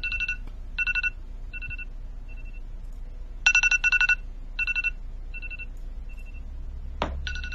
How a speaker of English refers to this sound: Is there an alarm going off in the back? Well, actually, I set this stupid thing to tell me 30 seconds, and for whatever reason now, it is fucking so.